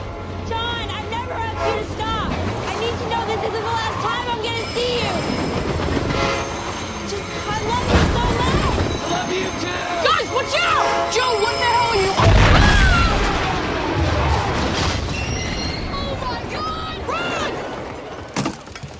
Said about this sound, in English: That crash is amazing. The explosions go on, and mammoth pieces of metal crash down at decibel levels no 80s movie could reach.